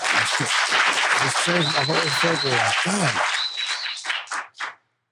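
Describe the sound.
A crowd bursts into steady applause, with voices shouting over it and a couple of high whistles, before it thins out into a few last scattered claps and stops.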